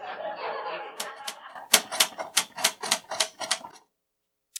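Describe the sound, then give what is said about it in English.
Typewriter keys clack at a table in a quick, uneven burst of about a dozen sharp strikes, fairly loud, after a moment of soft laughter, then stop abruptly. “Not with the typewriter. No typewriters at the table.”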